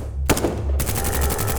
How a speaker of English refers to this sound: A cacophony of cries and gunfire erupted in the lobby. The young SWAT guys Harper had run into earlier had opened fire, and Pastor jerked spasmodically with the impact of each bullet.